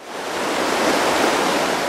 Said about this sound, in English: Steam and pistons and huge paddle wheels on the water.